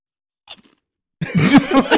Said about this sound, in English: Was that loud? That was loud. That was a perfect crunch. That was perfect.